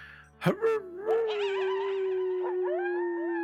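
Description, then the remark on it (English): A person imitates a howl: two short yelps, then one long, loud, sustained wavering howl held steadily to the end, with no talking. “Oh, God, you're going to start a howl.”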